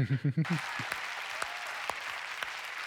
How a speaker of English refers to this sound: Yes, applause.